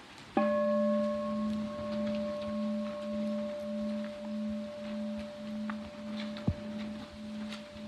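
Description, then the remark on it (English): A meditation bell is struck once during a group practice as people rise and come forward in lines, and rings on in a long, steady hum, its low tone pulsing slowly as it sustains, with no voices over it. “I'll be ringing the bell as the Buddha celebrates your practice.”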